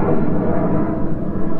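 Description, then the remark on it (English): A loud, steady roar of an airplane flying overhead near an airport, with a deep rumbling low end and a rushing hiss above it, continuous for the whole moment with no voices. “Let's let this plane go.”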